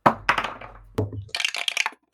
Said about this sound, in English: So, roll me perception. I do that with my dice.